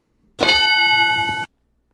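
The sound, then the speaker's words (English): A single bright bell chime rings out loudly, holding a steady metallic tone for about a second before stopping abruptly, with no voices around it. “We got different bells.”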